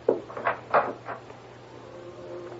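A door opens with a quick series of clunks and rattles, then settles into a low, steady background hum.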